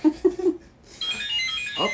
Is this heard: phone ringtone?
yes